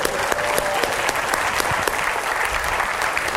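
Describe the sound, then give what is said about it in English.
An audience in Oakland at a Berkeley Lab science talk event applauds itself, clapping steadily and loudly, the dense patter of many hands holding a constant level for a few seconds without pause. “Please give yourselves a round of applause.”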